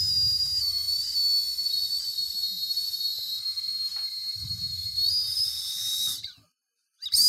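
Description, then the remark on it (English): Someone blows into a whistle that barely sounds: a long, loud, breathy hiss with only faint thin squeaks of tone, lasting about six seconds before stopping abruptly. “I can't make it whistle. This is a dud.”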